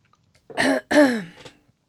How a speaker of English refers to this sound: Oh, God, I'm going to cough now. I always do this, don't I?